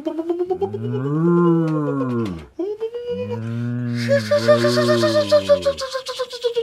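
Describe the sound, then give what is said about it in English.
A person imitates a cow, letting out two long, drawn-out moos, loud; some hissy, breathy noise rises over the end of the second moo. “I think you're having trouble doing the noises of the UFO and the cow, so if you do the UFO, why don't I do the cow?”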